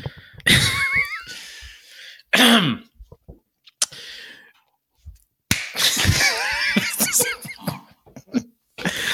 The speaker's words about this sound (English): All right, how do you know when we're starting? Whenever. There's our mark. We start at the clap or after the clap?